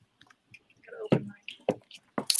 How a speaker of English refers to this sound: So, all right, I'm having a sip for Neal. Yep. Cheers, sir.